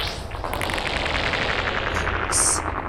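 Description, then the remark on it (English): A practice shot: a sustained burst of rapid gunfire, dense and loud, with quick repeated cracks blurring into a continuous roar for about three seconds. No one speaks. “That was just a practice shot.”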